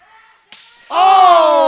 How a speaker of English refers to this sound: Oh! Good golly, Miss Molly. Oh, my God. We heard that one all the way back to San Juan, Puerto Rico. Goodness gracious. Quick shot to the mouth.